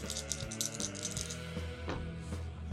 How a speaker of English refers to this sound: Sorry, I'm rolling my three dice.